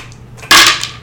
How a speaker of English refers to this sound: I rolled a d12.